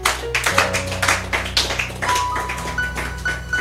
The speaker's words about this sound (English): Give the Lord a clap of hands.